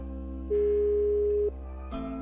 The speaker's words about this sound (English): Voicemail service. Please leave a message after the tone.